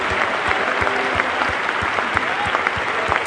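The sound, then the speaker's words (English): A crowd claps its hands in praise of God, steadily, with a dense wash of many hands and a strong beat of unison claps roughly every third of a second, plus faint voices and cheers underneath. “Clap your hands. Let's give God praise.”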